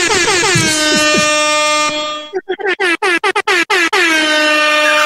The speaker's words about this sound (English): But then, you know, you've always got your air horn